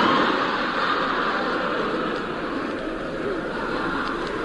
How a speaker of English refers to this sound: At Edinburgh Station, I was met by a platform. There should be a law against trains letting off steam when people are wearing kilts.